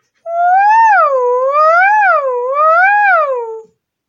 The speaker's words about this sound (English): Let's go. Quick, let's go. The alarm.